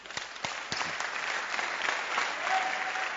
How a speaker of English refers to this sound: You can clap your hands.